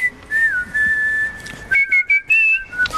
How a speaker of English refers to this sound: Your whistling's pretty poor.